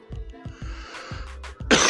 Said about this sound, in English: Excuse me. And that cough is not from the corona. It's from paper airplanes being flown. And, you know, incense throughout the man cave, you dig?